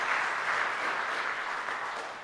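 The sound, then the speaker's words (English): People at a morning worship service applaud the musicians steadily, a dense wash of many hands clapping at once, sustained and even for a couple of seconds with no voices above it. “Would you give thanks for Andy, Ray, Emily, and Vince for their music this morning?”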